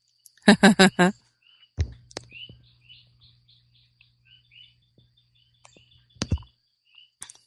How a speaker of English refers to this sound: so I'm watching the sunrise. The birds here are beginning to join in with the frogs.